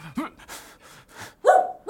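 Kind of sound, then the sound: animal, dogs barking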